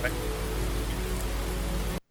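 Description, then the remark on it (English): Steady, hissing rain sleep sounds play continuously with a faint low hum underneath, then cut off abruptly at the end. No one speaks. “Then you go right back to rain sleep.”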